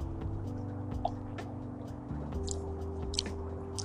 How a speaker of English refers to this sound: Hold on, let me get a sip of this ghost.